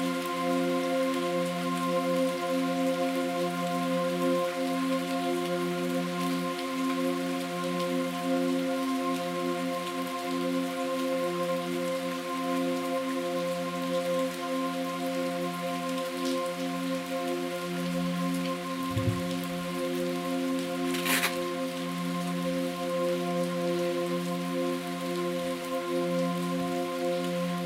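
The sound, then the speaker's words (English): Steady rain falls outside a window continuously for the whole stretch, a dense, even patter with a low droning hum beneath it and one brief sharper crackle near the end; no one speaks. “Even just the rain falling outside your window is a big production.”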